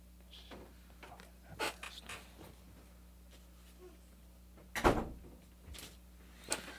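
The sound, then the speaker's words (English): A door thuds shut with a solid bump, preceded by softer knocks and rustling handling sounds, over a steady low room hum with no one talking. “All right, so you gotta go back upstairs. Yeah. Close the door, please.”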